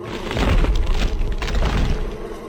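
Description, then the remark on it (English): A small explosion booms as a locked side door is smashed open, a loud burst of low rumbling and splintering crash that stays heavy for a couple of seconds before easing slightly. “A small explosion preceded Pilts smashing through the door.”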